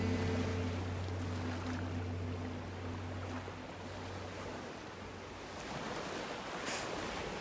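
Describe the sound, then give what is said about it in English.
Ocean waves wash in a steady, broad roar with no one speaking, while a low engine-like hum sits beneath the surf for the first few seconds before fading out. “It's so crazy that I live here now, right next to the ocean.”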